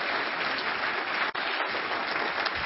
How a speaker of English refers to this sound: Somebody give the Lord a clap hand of praise.